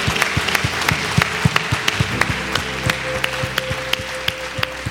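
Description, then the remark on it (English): A church crowd applauds steadily for two people who raised their hands, many hands clapping in a dense, sustained wash of sound with sharp individual claps standing out, and a brief shout rising from the audience. “Can we give these two individuals that raised their hand a huge round of applause?”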